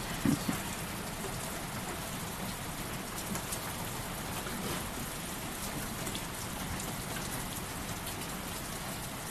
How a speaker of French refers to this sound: Vous allez pouvoir écouter la pluie.